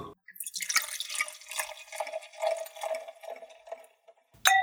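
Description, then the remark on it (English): 2017 Adams Reserve wine pours into a glass in a steady, gurgling stream for about four seconds, the splashing fluctuating as it fills, then a brief bright clink sounds at the very end. “So we have our official wine pourer, who is our next guest, that's going to be...”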